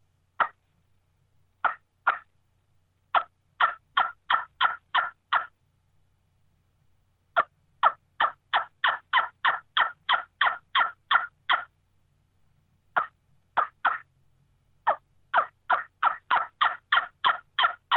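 A hen turkey call blown on a wingbone-style caller: bursts of sharp, high yelps in rhythmic runs, starting sparse then quickening into fast series, separated by short pauses, with no talking.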